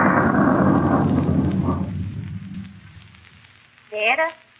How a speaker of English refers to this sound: I don't like storms.